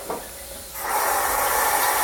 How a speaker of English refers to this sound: That was me starting the shower.